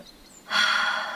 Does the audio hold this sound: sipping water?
no